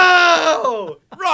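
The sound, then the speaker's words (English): A loud, strained human scream tapers off after about a second, breaks briefly into silence, then a second yell begins. It sounds forceful with no other background sound. “Just lets out a huge scream, comes back out.”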